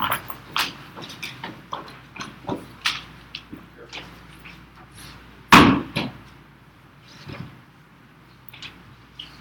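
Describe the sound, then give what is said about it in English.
Scattered knocks and scrapes of chairs being carried up to the front by two people and set down facing each other, with one loud thud near the middle and lighter clatters before and after. “can you guys bring your chairs up here and show these folks what a dyad looks like?”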